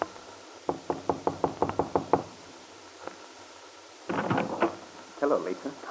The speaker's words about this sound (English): He had telephoned Lisa to arrange a meeting in her room at the hotel, and now Paul stands before her door waiting for an answer to his knock.